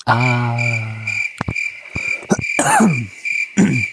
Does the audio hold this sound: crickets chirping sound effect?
yes